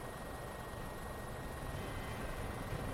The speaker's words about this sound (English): Ah, looks like the helicopter is ready. Let me ask the pilot if he is ready.